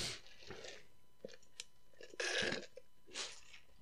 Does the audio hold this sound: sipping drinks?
yes